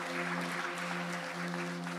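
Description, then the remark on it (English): Steady audience applause as the kids are invited up to lead the singing at an Advent service: dense, crackling clapping from many hands that holds at an even level for the whole two seconds. A faint low hum runs underneath, and nobody speaks. “Well, let's invite the kids up with a round of applause.”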